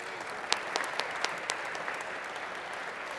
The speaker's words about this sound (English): Those applause are for you, buddy, in this decision.